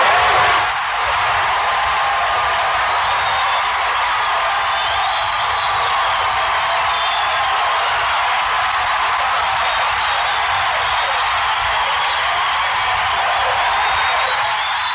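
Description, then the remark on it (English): Sustained crowd applause and cheering in response to a speaker roars on without a break for the whole fifteen seconds, a dense wash of clapping with scattered whoops and whistles rising above it. “And watch how long listen to how long the response is to him. Yeah, it's almost the applause.”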